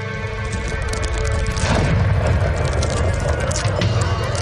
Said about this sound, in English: Something's going on outside. Look, at the end of the wall, that ship crashed into the dock. The crew may need help.